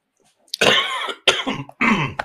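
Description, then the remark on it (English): Three loud coughs in quick succession, each a harsh, raspy burst with a throaty rattle, separated by brief pauses and standing alone without any talking. “I cough a little bit, and you know, I'm not going to edit that out.”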